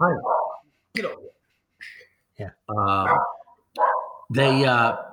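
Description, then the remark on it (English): A dog barks several times in short, uneven bursts separated by brief pauses, fairly loud, with some higher yelping, whine-like tones mixed in. “excuse me, folks in the background. I have a dog.”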